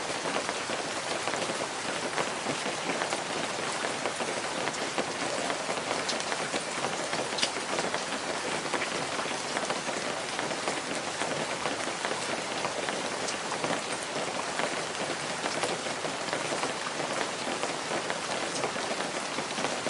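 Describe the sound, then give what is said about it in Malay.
Heavy rain pours down steadily during a fierce typhoon at night, a dense, hissing wash of drops pattering on surfaces with no letup for the whole stretch, loud, with no voices. “Bunyi hujan dan guru memecah kesunyian malam sementara mereka meluncur laju menembus Taufan yang ganas.”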